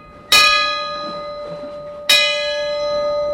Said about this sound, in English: That's the original bell. It was saved by a crew member when the ship was decommissioned. And technically, still property of the U.S. Coast Guard.